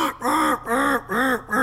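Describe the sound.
Four loud, nasal hen quacks blown on a duck call, each drawn out with a slight rise and fall in pitch, in a steady even rhythm with brief gaps between them.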